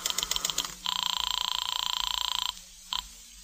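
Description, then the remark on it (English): A telephone rings with a fast, buzzing trill that holds for over a second, then a brief second burst begins after a pause, as a call to Madame Natasha's Temple of the Zodiac waits to be answered. The ring is clear, with no voices. “I went over to the phone and called Madame Natasha's Temple of the Zodiac.”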